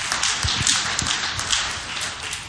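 A crowd applauds steadily, many hands clapping at once in a dense, even patter that stays loud for the whole stretch with no voices over it.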